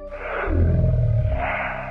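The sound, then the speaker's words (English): A deep, guttural werewolf roar, loud, swelling into a rumbling growl for about two seconds with no speech over it. “This is no dog or no ordinary wolf. This is Lugaru. Lugaru? Surely you don't mean a werewolf.”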